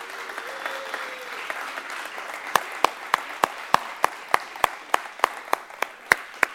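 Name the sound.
audience applauding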